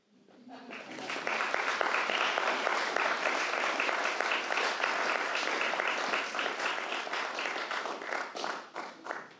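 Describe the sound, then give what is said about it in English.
An audience breaks into sustained applause, many hands clapping in a dense, steady patter that swells quickly, holds loud for several seconds, then begins to thin out at the end. “If you believe in ghosts, please clap.”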